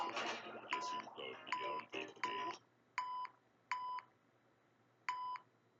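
A series of short, sharp electronic censor bleep tones, about seven in all: the first few come in quick succession over a dense, noisy jumble, then three more sound alone, evenly spaced.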